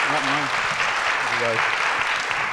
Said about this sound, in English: So welcome Mark Burton, and I ask you a big applause for him.